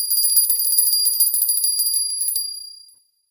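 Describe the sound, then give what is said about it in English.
A small silver bell rings rapidly and continuously for about two and a half seconds, a shimmering high-pitched trill that then fades away into silence. No voices accompany it. “Try if the silver bell works.”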